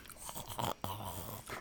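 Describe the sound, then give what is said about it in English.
Someone chewing food with their mouth, a few soft crunchy bites and moist mastication sounds at a moderate level, with a brief low steady tone partway through. “You know, forgive me for talking with food in my mouth.”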